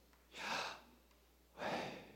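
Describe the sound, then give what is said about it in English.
A deep, close breath in followed after a pause by a long breath out, two soft airy rushes with near silence between them and no talking. “Hebrew scholars, when they study the name of God, Yahweh, they have found that YHWH, when put together, is actually the sound of breathing.”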